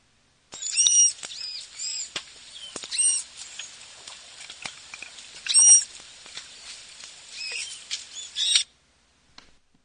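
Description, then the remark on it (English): High-pitched manatee chirps and squeaky whistles repeat in quick, irregular bursts over a faint hiss for about eight seconds, then stop abruptly; no talking. “If you'll bear with me, I have a little clip of their vocalizations.”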